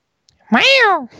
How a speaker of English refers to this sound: She has Hello. A beautiful kitty.